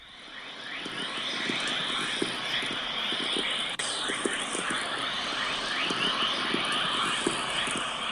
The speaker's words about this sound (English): that wave that you just heard there was Whistler Mode Chorus, which is a particularly important wave which can accelerate particles in the radiation belts